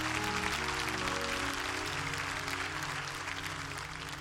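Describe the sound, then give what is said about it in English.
A crowd claps steadily to praise God for His word, a dense wash of many hands with a low sustained organ-like tone underneath, gradually easing in loudness toward the end. “Clap your hands and praise God for His word.”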